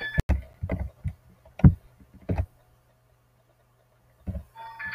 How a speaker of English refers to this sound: the moon is full and the sounds of the water are coming.